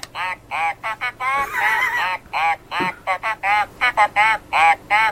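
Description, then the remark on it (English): A toy duck quacks as its beak is pressed, a quick string of about a dozen loud, nasal, squawky honks in an uneven rhythm, with no talking. “He says, oh my god, if you press his beak.”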